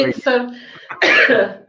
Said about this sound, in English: Don't cough.